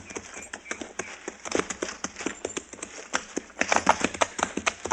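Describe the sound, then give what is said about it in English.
Horse hooves clip-clopping steadily on hard ground, a quick irregular patter of sharp knocks as riders split up to track a man's trail, moderately loud with no voices. “You ride to one side and I'll follow his trail.”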